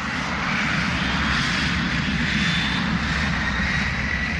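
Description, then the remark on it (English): A steady, loud roar of Boeing 747 jumbo jet airliner engines fills the whole stretch, a broad rumbling drone with a faint high whine on top and no talking. “First, the Boeing 720 appeared in Irish colours, then the gas-guzzling 707, and finally, the more economical 747s or jumbo jets.”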